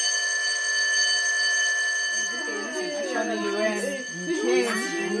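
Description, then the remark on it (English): A school's steady, high electric emergency bell rings without a break, its bright metallic tone holding throughout, and after a couple of seconds a crowd of students' voices starts chattering underneath it. “She was just telling her schoolmates all about her experiences when suddenly the emergency bell rang.”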